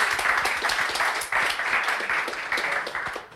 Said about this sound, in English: So if you can give a massive round of applause and a huge thank you to Mr. Marcus Brigstock.